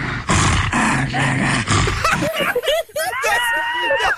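Morrissey's dog Prince gives a rough, sustained growl, then shifts into a string of short, pitch-bending yowls and whines that sound oddly like it is saying the word Anthony.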